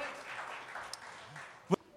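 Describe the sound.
A crowd applauds in a dense, steady patter of many hands, with voices mixed in and one sharp, louder knock near the end.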